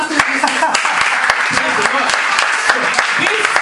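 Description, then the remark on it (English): A church audience applauds unto Jesus during a service, a steady, dense, loud wash of many overlapping claps holding throughout, with some voices faintly mixed into the crowd noise. “Clap of you unto Jesus, please.”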